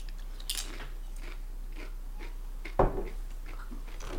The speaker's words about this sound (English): I can hear you crunching. It's good flavor. It's good flavor.